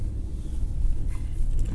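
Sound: car driving on road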